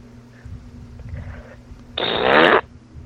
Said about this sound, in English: Okay. Which one are you wanting? Let's hear your best fart sound effect.